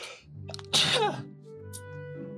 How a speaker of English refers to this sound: Excuse me. Hold on. I got to sneeze.